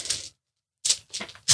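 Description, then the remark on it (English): Many dice clatter and rattle in several quick bursts as they are poured in as a prank, with a short pause after the first spill, fairly crisp with no voices. “The best part is he's not going to take all those dice out anytime soon.”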